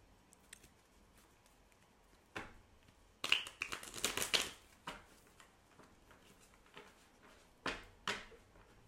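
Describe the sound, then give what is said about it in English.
Tarot cards are shuffled in a dense, crackling riffle lasting about a second, surrounded by scattered soft taps and flicks as cards are handled and drawn, with no talking. “So let's pull a tarot card.”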